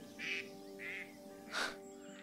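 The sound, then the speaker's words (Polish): Birds squawk in a noisy squabble, three harsh, raspy bursts in quick succession, the last one loudest, over a low steady background hum. “Nie wiem, czy to słychać, ale to jest straszna awantura tych ptaków.”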